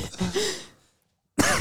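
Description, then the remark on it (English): Two rough, raspy coughs, the first longer and trailing off, followed by a short pause and a second sharp burst. “you sneezing? You coughing?”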